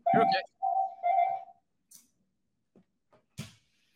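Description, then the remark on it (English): A landline telephone rings in three loud, steady electronic tone bursts of a mid-pitched warble, followed by quiet scattered clicks and a brief noisy rustle. “Was that a landline phone?”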